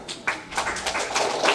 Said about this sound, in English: All of those who are functionally totally blind applaud.